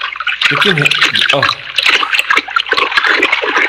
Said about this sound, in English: I have a bucket of very warm water. To finish. And now I move to the warm water. Ah, oh, it's like a spa.